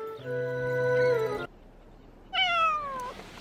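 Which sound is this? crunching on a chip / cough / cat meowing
cat meowing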